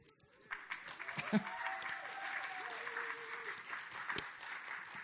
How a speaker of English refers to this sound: I promise I didn't pause for you to applaud. I just really needed a drink of water.